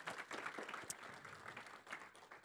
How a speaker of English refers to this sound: For just a second, hey, can we just clap for these guys and the service that they do for our community?